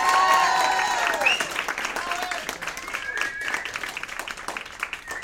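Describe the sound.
An audience applauds a storyteller again after his story, a dense patter of many hands clapping, with a few whoops and raised cheering voices at the start before the clapping carries on alone and gradually thins.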